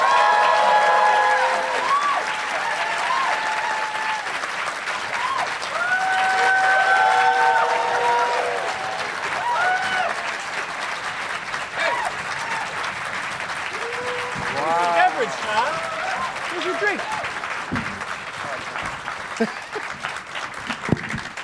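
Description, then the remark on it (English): An audience bursts into sustained applause with scattered cheers and whoops as five guests, Chris Gethard, DeAnne Smith, Ron Bennington, Chad Daniels and Todd Glass, are brought out, a dense wash of clapping that holds steady for about twenty seconds, with shouted voices rising and falling above it. “Let's get them out here. Please give it up for Chris Gethard, DeAnne Smith, Ron Bennington, Chad Daniels, and Todd Glass.”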